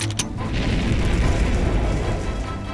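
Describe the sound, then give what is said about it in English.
A sharp ignition burst gives way to a loud, sustained roaring rumble, heavy in the low end with hissing noise on top, holding steady as a jetpack on a suit fires and lifts off into the air, with no voices. “Mia pressed a small red button on her suit. Time to use my jetpack.”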